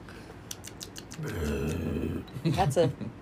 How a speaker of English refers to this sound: The belching is a...